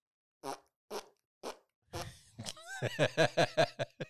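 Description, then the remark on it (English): A child imitates how a parent farts with mouth fart noises: three short separate puffs, then a long, loud sputtering raspberry that pulses rapidly and buzzes for about two seconds. “That's how I fart? Just a bunch or just one long big fart?”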